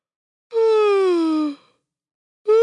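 A person lets out a long, drawn-out yawn: one loud, close, voiced sound of about a second, sliding slowly downward in pitch. After a short pause, another vocal sound begins.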